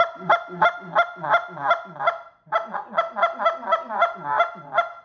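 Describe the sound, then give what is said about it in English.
A goose call blown in a quick, steady series of honks, about a dozen, with a hollow, muffled tone, loud, with one brief pause midway; the caller's hand is rotated around the call to make the tone hollower with more back pressure. “Now I can rotate it a little bit to get a little bit hollower. It's gonna create a little more back pressure.”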